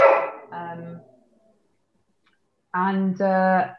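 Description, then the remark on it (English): A dog wanting to get in barks in two pairs of drawn-out, whiny yelps, separated by a short silence, moderately loud, with no talking over them. “Your dog is really wanting to get in.”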